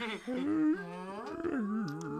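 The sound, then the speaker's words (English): Whale calls: long, low, moaning tones that slide up and down in pitch, rich with overtones, running continuously at a steady moderate loudness with no one speaking. “Just whale noises.”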